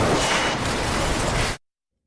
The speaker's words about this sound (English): A car accident.